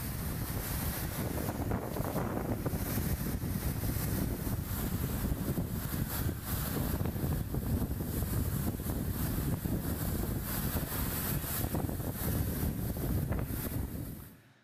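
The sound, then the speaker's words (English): Strong, steady wind roars across an open microphone while waves churn and slap during a storm on the Sea of Galilee, a dense, continuous storm noise with no voices, fading out abruptly at the end. “So I brought to you a video of, like, a storm on the Sea of Galilee so you can feel what this would have been like for the disciples.”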